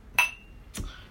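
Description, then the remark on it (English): Two wine glasses clink together in a toast, the first tap bright and ringing with a sustained tone, followed about half a second later by a softer second clink, with no talking. “Prior to this, Cabernet Sauvignon, we had a, white Zinfandel that was very delectable. So cheers to that.”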